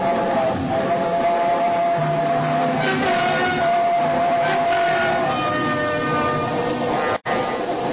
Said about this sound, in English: It was only the train going through the tunnel, but it brought it all back. A scream and the train roaring by, the whole house shaking.